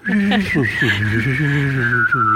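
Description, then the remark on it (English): One person whistles a steady high note while humming a sliding lower tone at the same time, making a continuous, warbling UFO-like sound that wavers throughout. “would you like to hear me whistle and hum at the same time to make a UFO sound?”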